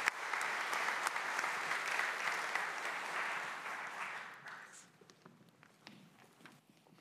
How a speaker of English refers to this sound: Give another round of applause for our graduates. Thank you, guys.